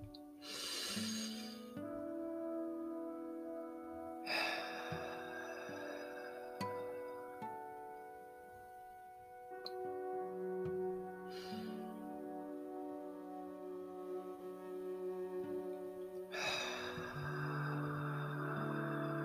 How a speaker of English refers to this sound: And now take 3 deep breaths to let out any tension from the day.